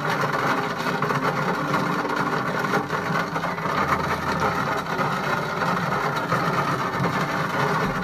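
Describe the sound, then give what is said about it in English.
Steady, dense rain hisses without a break in London during a heatwave, and a low rumble of thunder swells faintly underneath for a couple of seconds midway through. “Waited for the sound of the rain for so long, because this London heatwave has been driving me nuts.”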